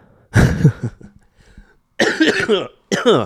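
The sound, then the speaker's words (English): Three harsh coughs, the first followed by a brief quiet gap and the last two coming in quick succession, loud and raspy with no talking. “I apologize. See, there's that cough.”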